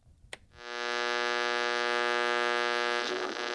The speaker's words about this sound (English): In the distance, they hear the radio in the living room click on.